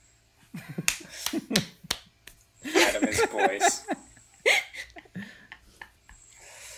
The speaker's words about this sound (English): Play the laugh track, boys.